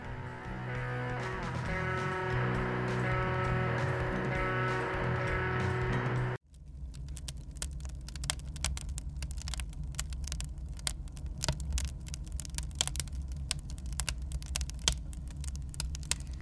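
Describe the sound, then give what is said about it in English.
A crackling fire pops and snaps in quick, irregular bursts over a low, steady rumble. It follows a few seconds of sustained droning, tonal music that cuts off abruptly. “Ah, the nice, warm, crackling fire warming up my soul with this holiday spirit.”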